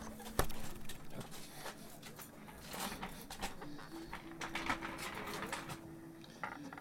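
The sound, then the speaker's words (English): A tambourine shaken in quick, irregular bursts, its jingles rattling and clicking almost continuously, fairly quiet, with no voices. “And you just make some noise with the tambourine.”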